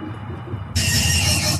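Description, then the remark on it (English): After a brief quiet rumble, a loud, harsh video game monster screech erupts suddenly and holds for nearly a second, piercing and abrasive, before cutting off. “Somebody's getting screeched.”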